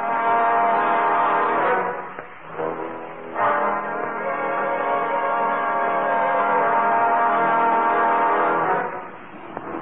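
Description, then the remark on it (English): A regular car horn blares loudly in a long, steady blast, breaks off briefly, then sounds again and holds for several seconds before fading. No one speaks. “And I say it was a regular car with a regular horn.”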